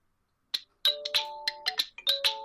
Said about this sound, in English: I'm using one of the pre-installed ones. I'm using the OnePlus, so I have OnePlus ringtones to choose from. Oh. I'm using one called Game.